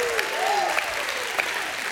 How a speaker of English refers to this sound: Give Him a hand clap and a shout of praise.